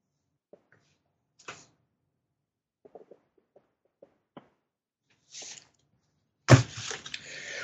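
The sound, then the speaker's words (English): A worn chair readjusting itself creaks and shifts with scattered small clicks and brief rustling creaks, then a louder, sustained burst of creaking and scraping near the end. No one speaks. “Every time you hear that noise, that's my chair readjusting itself.”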